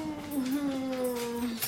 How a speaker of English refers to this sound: Our dogs are going nuts tonight.